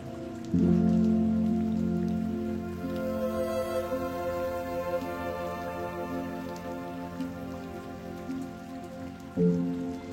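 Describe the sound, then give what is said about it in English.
Steady rainfall patters continuously on concrete, moderately loud, with a low droning hum underneath and a brief swell near the end. “The raindrop's rhythm briefly slows, then intensifies, peaceful and benevolent, a gift from moonlit skies.”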